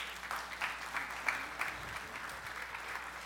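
An audience claps steadily as a round of applause for a child, a dense patter of many hands with small surges, without any talking over it.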